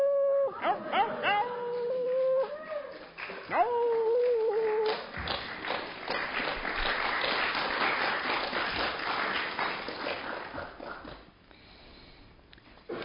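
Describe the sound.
A voice lets out a few wavering, coyote-like howls, rising and falling in pitch, then a crowd breaks into loud, sustained applause that gradually fades.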